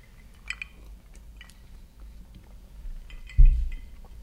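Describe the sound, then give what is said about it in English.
Glasses clink together in a toast, a couple of quick, light chimes, followed by quiet handling noises and a soft low thump; no one speaks. “Well, cheers, guys. Cheers.”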